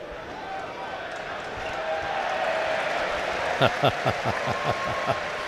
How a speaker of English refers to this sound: Nice applause for the ball boy. Yeah, he did throw the ball to him. He just walked with the ball until he got to him and then passed it to him. Very polite.